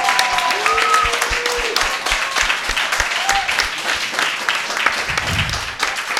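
A live audience applauds steadily for several seconds, dense clapping filling the whole stretch, with a few rising whistles and cheers on top and a regular low thumping underneath.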